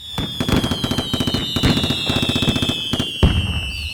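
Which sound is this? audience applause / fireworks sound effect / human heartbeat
fireworks sound effect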